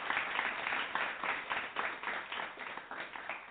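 Steady applause from a group of people, dense overlapping claps at a fairly even loudness throughout, with no voices.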